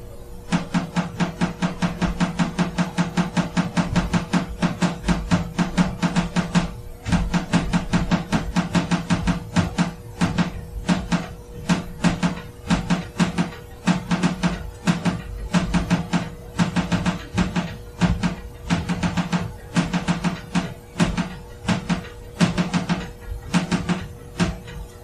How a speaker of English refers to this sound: the tapping got like so loud and forceful and like just over and over and over and over again